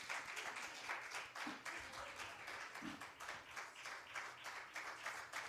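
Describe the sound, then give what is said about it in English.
An audience applauds steadily throughout, giving God a hand in praise, a dense wash of many hands clapping at once, with a few faint voices calling out underneath. “Give God a hand, praise.”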